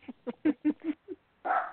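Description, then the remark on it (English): A small dog yaps in a quick run of about six short, sharp barks, then lets out one longer, louder bark, with no one talking. “And we can hear little magic joining in as well, Kate's doggy.”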